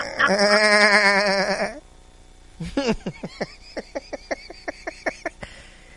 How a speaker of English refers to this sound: Have you ever gotten high with a goat? With a goat? Yeah. It'll be fun. Yeah, because when you get high with a goat, as I was saying before, you can't tell if they're laughing or making fun of you. Just like that.